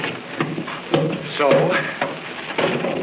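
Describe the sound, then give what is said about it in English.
The tops of several wooden powder kegs are knocked in with about five dull, hollow thumps at uneven intervals, moderately loud, over faint murmuring voices and a low background hiss. “break open a couple more of those kegs and lay a train of powder”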